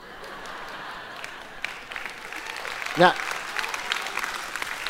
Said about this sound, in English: not sure I like that applause, but anyway.